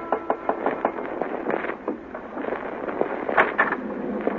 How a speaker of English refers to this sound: Then, the night before we were due to dock in Southampton, I was surprised in my cabin by an unmistakably feminine knock on the door.